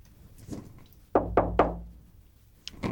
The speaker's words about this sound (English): So I look around and I knock. You knock on the door. There's no answer.